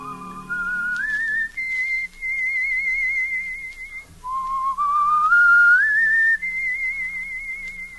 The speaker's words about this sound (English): I can still hear him sometimes. I can still hear him whistling that tune. It's only in my mind, I know.